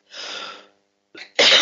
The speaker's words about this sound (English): Sorry, you guys. Coughing.